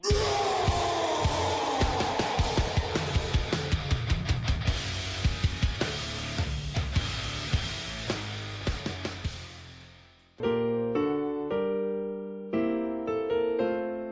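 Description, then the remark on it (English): Braun Strowman's wrestling entrance theme blasts out, loud and heavy with pounding, regular hits for about ten seconds, then drops into sustained synth-like chords in bursts. No one speaks over it. “We're going to actually hit Braun Strowman's music.”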